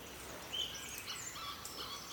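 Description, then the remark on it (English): Faint birdsong drifts through a soft, steady outdoor ambience in Superior National Forest near the Canadian border, with a few brief high chirps scattered across the moment and no voices. “Amidst the birdsong and the gentle lapping of the water, what better place to cherish the peace and quiet?”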